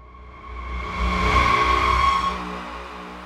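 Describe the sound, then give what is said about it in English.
A car engine rumbles and revs up, growing louder for a couple of seconds before easing off and fading as the car pulls away. No voices. “The whole store went up in flames by the time he started his car.”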